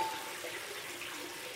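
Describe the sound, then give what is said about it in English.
Water rushes in a steady, continuous hiss and roar, a heavy flow filling a room, holding at an even loudness throughout with no voices. “The room is filling with water, and you need to get out fast.”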